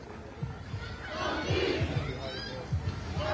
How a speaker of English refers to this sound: The crowd is still remaining here in what is a standoff at this point with police